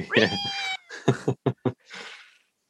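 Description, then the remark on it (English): A person does a drawn-out, wavering meow imitation, followed by a few short, clipped cat-like yowls and a breathy trailing sound, fairly loud with no other talk. “So if you drink out the plate, you become like a human cat. you turn into a cat.”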